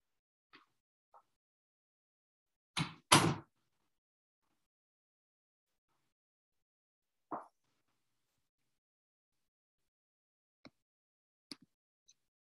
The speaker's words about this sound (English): I'm going to go ahead and shut the door because my cats are very loud.